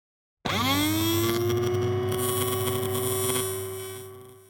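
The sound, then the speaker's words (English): A dentist drill spins up from silence, its pitch climbing quickly into a steady, piercing whine with a hissy edge that holds for about four seconds before easing slightly. “Dentist drills might make a loud sound”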